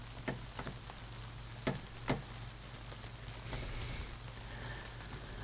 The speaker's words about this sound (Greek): Έπιασε και βροχούλα εδώ.